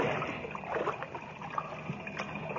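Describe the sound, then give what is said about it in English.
Steady sloshing and splashing of water as two people wade through the partly flooded lower shaft of a secret mine on Saturn's sixth moon, with small trickles and churning swirls echoing in the shaft, no voices. “As they wade through the water of the partly flooded shaft, the sound filters down through the mine.”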